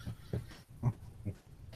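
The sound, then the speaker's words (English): A dog makes a series of short snorting, grunting noises, about four or five quick bursts with brief pauses between, at a moderate volume with no talking. “Get back, dog. What are you doing? Being assaulted.”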